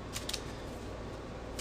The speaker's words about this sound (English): Do a quick shuffle.